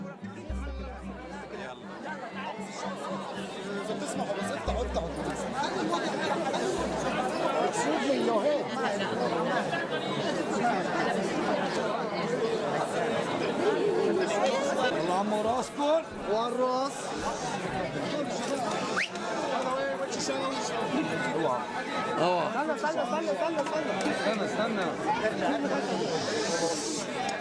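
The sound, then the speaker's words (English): A dense crowd chatters continuously in the streets of Jerusalem on Good Friday as people commemorate the crucifixion of Jesus, many overlapping voices blending into a steady, fairly loud hubbub with no single speaker standing out, sustained throughout. “I joined the crowds in the streets of Jerusalem on Good Friday as they commemorated the crucifixion of Jesus, an event that took place almost 2,000 years ago.”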